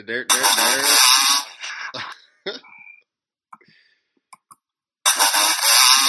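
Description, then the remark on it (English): A dirt bike engine screams in a loud rev as the rider goes off a ramp, then the throttle chops off abruptly. A few faint clicks follow in near silence before another loud revving burst returns. “If you guys hear that, that's Ed Rossi going off the ramp.”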